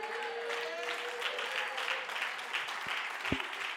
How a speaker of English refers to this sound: Well, all the honest people will clap right now. At least the choir.